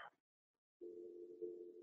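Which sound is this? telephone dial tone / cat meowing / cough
telephone dial tone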